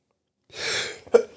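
sneeze

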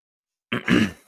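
sneeze

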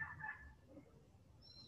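small bird chirping

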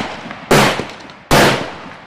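gunfire

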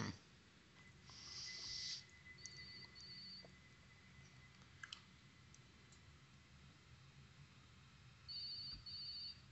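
telephone ringing

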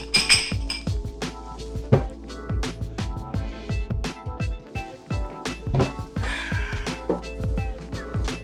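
glasses clinking

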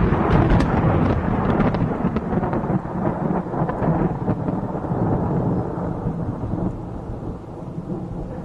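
thunder sound effect

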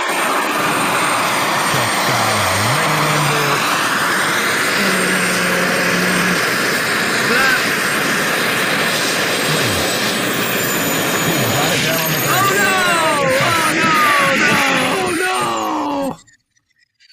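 helicopter flying overhead

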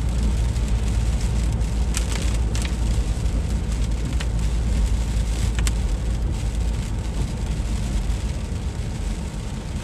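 rain

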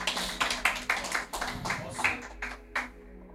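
audience applauding the choir

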